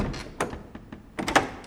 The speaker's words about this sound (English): He shut his heavy door, locked it.